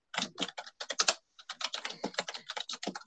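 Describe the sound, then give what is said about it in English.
Rapid, forceful typing on a computer keyboard, a dense stream of sharp clacking keystrokes with a brief pause partway through, fairly loud with no voices. “Can you hear my very aggressive typing?”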